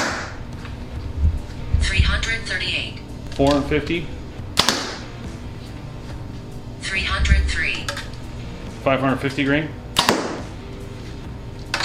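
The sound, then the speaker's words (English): Two arrows are loosed from a bow a few seconds apart, the first weighing 350 grains, each a soft release and whoosh ending in a sharp, loud crack of impact, with murmured voices in between. “So let's start with our first arrow, 350 grains.”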